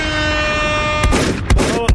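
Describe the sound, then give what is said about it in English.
A loud, steady air horn blares for about a second, then several short, harsh bursts of noise follow in quick succession. “Give me a fucking air horn, bro.”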